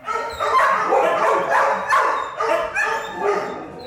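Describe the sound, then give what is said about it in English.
Hundreds of dogs, big and small, on death row at the Center for Animal Care and Control shelter in Manhattan bark, yelp and whine at once in a loud, continuous chorus, the cries overlapping and echoing, with no people talking. “Once you've heard a big dog cry, you won't forget it. Or hundreds of dogs, big and small, black and brown and dappled.”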